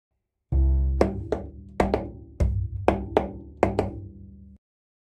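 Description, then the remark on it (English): Sharp, bright drum taps in a piece of music, depicting a bear smashing a log to gather honey, strike about nine times in loose pairs and singles over a sustained low, humming instrumental note that holds steady until the taps stop. “These tapping drum beats show the bear smashing a log to gather delicious honey.”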